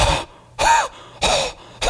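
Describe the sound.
A voice imitates the wheezy, asthmatic-sounding call of a bird in the Amazon: four breathy, rasping bursts in a steady rhythm, each with a faint whistling rise and fall, loud and with no talking.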